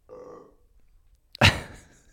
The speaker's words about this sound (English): It was just, pardon me, another burp. I just had a Chipotle chicken toastie.